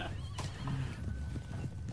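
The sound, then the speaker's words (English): Horse hooves clip-clop in a steady walking rhythm as the horse walks to cross a wide, shallow river, with a brief whinny-like tone mixed in over a dense low rumble of ambient background, moderately loud. “And your horse. I could actually just teleport across, but then I'd probably get jumped by Ettercaps. So let's just walk.”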